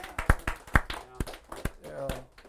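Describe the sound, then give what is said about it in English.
Several sharp claps ring out at an uneven pace, loud single hits scattered among quieter ones, while voices murmur underneath. “Yeah, that's worth clapping.”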